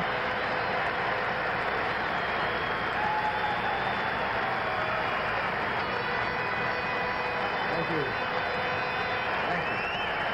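A large convention crowd applauds and cheers without pause after a line in a speech, a dense, steady roar of clapping that fills the whole stretch at an even, loud level, with indistinct voices mixed into the din.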